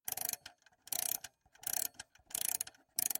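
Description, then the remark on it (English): Someone winds an old alarm clock: bursts of rapid ratcheting clicks, about five turns in a steady rhythm, each a dense rattling grind separated by short pauses, fairly loud with no voices. “Now, wind up that alarm clock and put it here on this lead table in the center of the magnetic field.”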